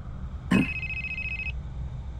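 A single telephone ring, a call from Dad, sounds for about a second, starting with a sharp strike and holding a steady, high electronic tone before cutting off, over a low background hum.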